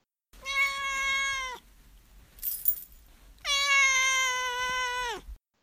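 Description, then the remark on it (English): Two long, drawn-out meows from Dorote, a pet cat, fairly loud, each holding a steady pitch before trailing off, separated by a brief pause with a faint rustle. “All right, now it's time for Dorote's Corner, where my cat Dorote will give his opinion on the book.”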